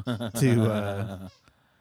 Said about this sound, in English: that's the dog squeaking. And she's running away.